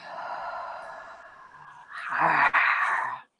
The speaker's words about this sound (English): One more big collective breath together in. Exhale completely and fully through the mouth.